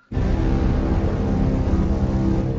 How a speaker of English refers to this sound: What? I did not expect that one to be that noise. That's the Inception noise. That's the Inception noise, or Lost.